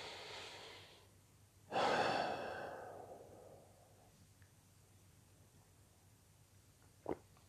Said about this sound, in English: Take a breath.